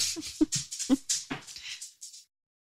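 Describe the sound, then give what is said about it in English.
A dog whimpers to be let out in a quick run of high, nasal whines, several short cries tumbling together for about two seconds before falling silent. No one speaks. “Do you want to take a pause to let your dog out?”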